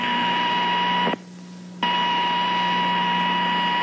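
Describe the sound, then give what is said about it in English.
A loud, steady electronic alarm tone with a harsh buzzing quality sounds a rapid pressure loss warning aboard the Skylab space station during a test of its warning systems, cutting out for under a second before resuming at the same level. “Or perhaps if we have a rapid pressure loss, we have another sound for that.”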